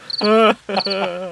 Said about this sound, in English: So if I don't get crickets on this one here, I'm I'm laughing too much. It's crickets. Okay, it's cricket worthy